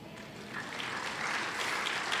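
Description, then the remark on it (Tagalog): Audience applause, a steady wash of many hands clapping that swells slightly after the first half-second and holds at a moderate level throughout, with no clear voices. “Ayun ang pumalakpak mga tao rito.”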